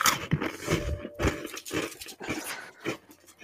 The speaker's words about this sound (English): Various crunching sounds. Did you not hear them?